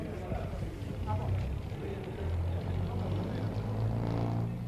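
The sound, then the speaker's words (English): A bus engine in Lourdes rumbles with a low, steady drone that strengthens and climbs slightly in pitch as the bus, with an invalid's chair fixed firmly inside, pulls away toward the Asile de Notre-Dame de Lourdes, with faint indistinct voices in the background. “Once in the bus, they're fixing it firmly, and the bus is moving off.”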